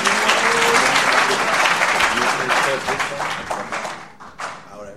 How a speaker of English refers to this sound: A round of applause for the elder.